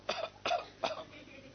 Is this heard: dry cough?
yes